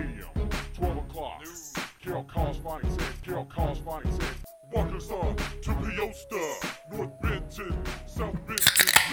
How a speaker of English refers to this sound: That, my friends, is the sound. Sound of a couple of crisp beers being cracked.